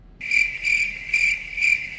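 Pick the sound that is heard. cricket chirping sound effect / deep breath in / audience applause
cricket chirping sound effect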